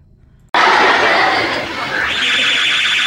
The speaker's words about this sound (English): You know, there's no fire. I just burned some toast. Oh, it's okay. It's only toast. It's only relax, everybody. It's just a fire alarm.